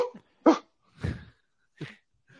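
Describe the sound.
A person imitates a dog with a series of short, loud vocal barks and yips, about four bursts spaced irregularly, with brief silences between them.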